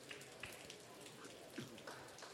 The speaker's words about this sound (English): Rain appears to have subsided. It's falling through a gutter behind us, but that's not the rain itself. That's coming off the roof.